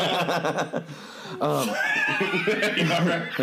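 A horse whinnies loudly, a shrill, quavering neigh that rises and falls in pitch over a few seconds, with fluttering pulses and a brief break partway through.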